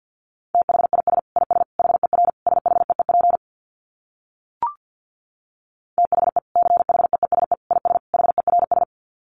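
Rapid Morse code beeps at 50 words per minute on a single steady mid-pitched tone, keyed in two fast bursts of dits and dahs separated by a pause with a brief click. No voices.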